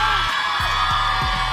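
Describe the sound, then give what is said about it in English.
A beach crowd at Elvis Duran and the Morning Show's Beach Bash at Jenkinson's in Point Pleasant whoops and cheers on a morning in a dense, steady roar, with rising and falling shouts poking out of the noise for the whole short stretch. “So we have a crowd here.”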